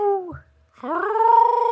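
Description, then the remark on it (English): A person imitates a wolf howl with their voice for Halloween: a short falling wail, a brief pause, then a louder, rising, sustained howl with a slight wavering quality. “We just did a little howl for Halloween.”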